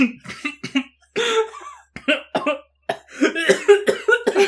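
coughing

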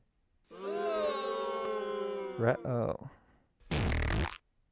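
fart sound effect

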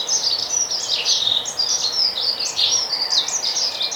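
dunnock song

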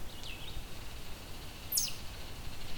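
baltimore Oriole song

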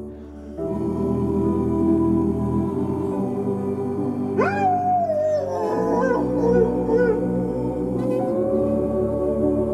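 dog howling

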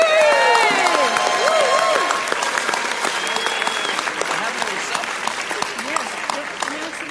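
audience applause

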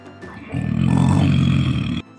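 wolf growling

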